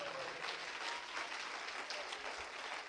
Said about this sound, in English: Oh, somebody clap your hands to the Lord right now.